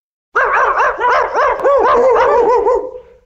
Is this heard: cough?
no